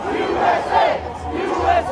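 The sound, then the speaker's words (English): A medium-sized crowd on the east side of the US Capitol, facing the Library of Congress, at about 10 a.m., chants slogans such as "Stop the Steal" and "USA" in unison, many voices rising and falling in loud rhythmic swells, with a low rumble underneath throughout. “So we got to the east side of the Capitol, the side facing the Library of Congress, at about 10 a.m., and there was kind of a medium crowd there, and they were doing their usual chants, like Stop the Steal and USA.”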